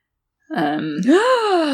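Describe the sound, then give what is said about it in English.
A voice imitates a dramatic gasp: a sudden loud intake that swells into a drawn-out voiced exclamation, rising and then sliding down in pitch, with no other sounds around it. “gasp.”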